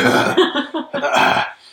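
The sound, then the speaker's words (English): A long, loud, gravelly burp rumbles, broken into a few throaty pulses over nearly two seconds before trailing off. No speech accompanies it. “Sorry, I'm having a lot of burps. I'm trying to speak through them.”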